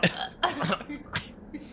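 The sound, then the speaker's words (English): A voice imitates the harsh, guttural cough of someone coughing up blood: several rough wet bursts in quick succession, fairly loud, with brief gaps between them. “You just hear like a guttural.”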